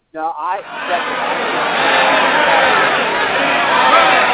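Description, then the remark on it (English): A Man United football stadium crowd roars in a steady, dense wash of noise that builds slightly and holds loud throughout, opening with a brief voiced shout before the mass of cheering takes over. “That's the Man United crowd.”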